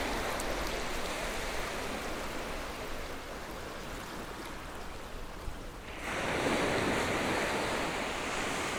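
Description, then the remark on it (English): Steady roar of sea surf washing onto a shore, a broad hissing wash that swells louder as a bigger wave rolls in near the end, with no voices. “The river widens as it leads to the sea.”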